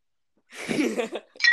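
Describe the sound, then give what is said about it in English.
A short rough clatter, then a bright metallic clink with a high ringing tone as an object drops against a bowl. “God damn, why is there a bowl there? I dropped my...”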